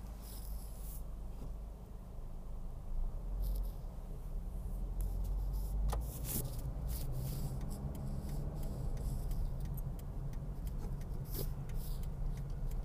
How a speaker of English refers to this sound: Thursday traffic has not been that bad.